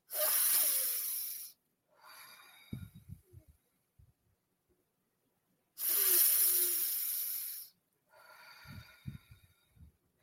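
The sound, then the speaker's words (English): Two deep, slow belly breaths during a breathing exercise: a long, airy inhale lasting over a second, then a softer, rougher exhale with low fluttering, repeated after a pause. No talking. “But start off breathing really deep down into your belly. So belly breaths.”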